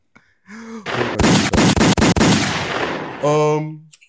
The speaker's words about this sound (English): Where's my gunshots?